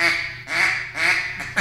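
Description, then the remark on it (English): A duck call blown in a flag quack: three long, nasal, buzzy quacks in steady rhythm, then a short clipped one and the start of another, loud with no talking. “Flag quack.”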